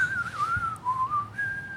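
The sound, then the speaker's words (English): A person whistles a wavering, sustained tune, the pitch sliding gently up and down before settling on a steady high note. No talking. “That is not a sound effect. That is actually … whistling.”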